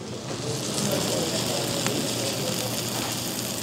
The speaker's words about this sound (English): And it all comes out on the steaming hot platter. The whole thing smokes up the room and crackles as it comes towards the table.